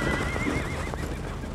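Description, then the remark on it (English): A person does a vocal impression of a horse neigh, a wavering, quavering whinny lasting about a second and a half, loud over a low rumbling background. “How'd you like my horse impression?”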